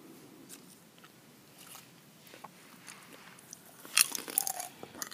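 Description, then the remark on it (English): Chewing of popcorn: soft, scattered crunches at first, then a burst of sharper, louder crunchy bites near the end. No one speaks. “I threw in some popcorn for fun as a surprise.”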